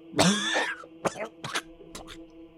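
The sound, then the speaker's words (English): A dying man, staked through the chest, lets out a long, strained, raspy gasp of bloody air, followed by three short, harsh coughs spaced about half a second apart, fading weaker toward the end. “He lets out a gasp of bloody air.”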